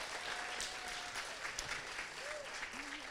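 A crowd claps steadily throughout, a dense, even wash of applause from a sizable audience, with a few faint voices and brief tonal sounds rising above it.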